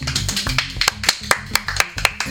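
Sharp hand claps land in a steady rhythm, roughly four per second, over a low, stepping musical backing. The claps are crisp and fairly loud, and no one speaks.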